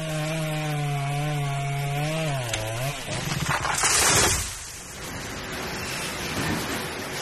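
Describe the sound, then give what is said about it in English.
A chainsaw cutting down trees: the engine buzzes steadily, its pitch dipping briefly, then gives way to rough, loud cutting and crashing noise that peaks and fades into a lower rumble. No one speaks. “Once the trees are cut down, the wood is shredded and turned into pulp.”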